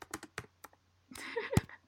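Loud clacking of a computer keyboard: a few sharp, irregular keystrokes, a brief pause, then a denser burst of typing ending in a heavy thunk, with no one talking.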